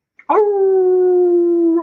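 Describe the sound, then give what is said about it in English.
A person imitates a dog's howl: one long, steady, tonal wail held loud for well over a second after a brief breathy onset. “He's got the better bark now these days. I got a howl.”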